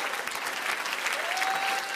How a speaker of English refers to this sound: Well, you ought to clap your hands and thank him.